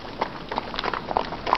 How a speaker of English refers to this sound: Yes, indeed, it was the horse. The horse was seen galloping down the hill and soon he reached the lake.